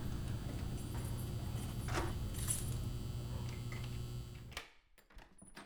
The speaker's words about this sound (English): She leaves the room, closing the door behind her.